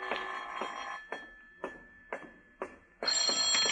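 telephone ringing

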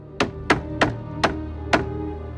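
knock

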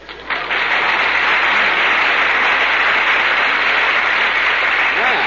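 studio audience applause

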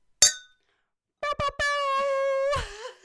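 drinking glasses clinking

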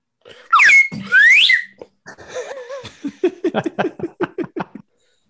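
slide whistle

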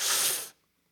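sniffing

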